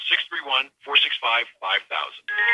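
A short advertising jingle for Rob Law, tax attorneys, sung through a thin, tinny, telephone-like line, with quick vocal phrases separated by brief pauses, fairly loud.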